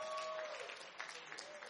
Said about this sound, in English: Give the Lord a round of applause for that.